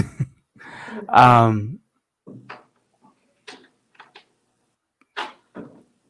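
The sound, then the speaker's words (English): A door is opened and shut with a creak and a few scattered latch clicks and light knocks. A brief voice is heard among them. “Someone was at my door.”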